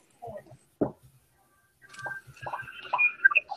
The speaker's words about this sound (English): Oh, yep, there's water on the stovetop. Okay, there's water on the stovetop. That makes sense. It would, really. Boiling water drops.